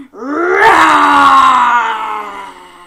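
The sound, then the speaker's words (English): A person does a loud, drawn-out roar like a tiger, one voiced growl that swells quickly and holds for a few seconds before fading slightly. “And the tigers, should we do a nice big roar?”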